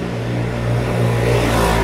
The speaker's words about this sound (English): It's kind of busy today with all the motorbikes and other bikes. It's a warm day, by the way, so I understand that a lot of people are outside getting some fresh air.